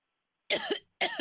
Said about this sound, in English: You're coughing while you're stirring the meatballs.